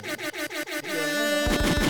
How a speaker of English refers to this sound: Air horn.